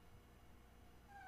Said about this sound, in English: what the heck, Haku? What are you meowing at? What? What?